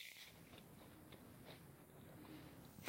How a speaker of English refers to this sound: And having my sugar-free granola cookies. Oh, shoot. I'm so sorry for chewing in your ear.